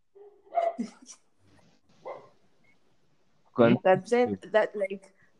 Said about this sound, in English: There's nothing I can do about my dog barking, bro.